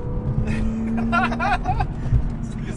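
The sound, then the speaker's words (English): A BMW M3 accelerates up a highway on-ramp to nearly 65 miles per hour, its engine and road noise forming a steady rumble with a sustained drone while voices and brief laughter rise over it. “Is that ever damn near 65 mile an hour on ramp?”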